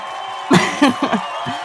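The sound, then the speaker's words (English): A cheering crowd sound effect: a steady wash of crowd noise with several sharp whoops and shouts bursting out over it, loudest in the middle and easing off toward the end. “So that cheer sound effect is super long.”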